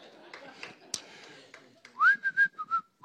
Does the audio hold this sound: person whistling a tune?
yes